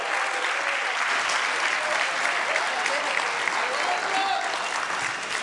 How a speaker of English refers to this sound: Would you all join me in giving Van Cochran, our lead pastor, a round of applause